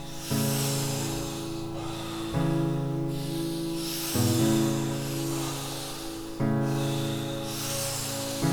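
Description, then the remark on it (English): Slow, deep breaths repeat in a steady rhythm, four cycles about two seconds apart, each with an airy rushing hiss over a low, steady humming tone. “Focus just on the breathing.”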